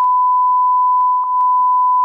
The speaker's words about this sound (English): So he's reading what it says on Wikipedia, and you, our producer, have to beep that shit.